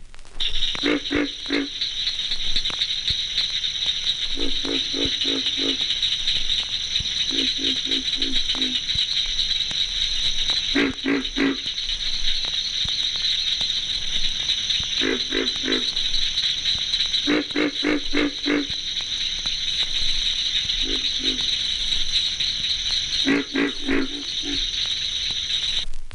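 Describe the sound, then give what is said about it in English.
Deep, grunting croaks of a pig frog arrive in short rapid bursts of several pulses each, repeating every couple of seconds over a steady high insect-like drone in a night chorus. “The pig frog, Ranagrillo, also has a deep voice, but one that is nevertheless higher pitched.”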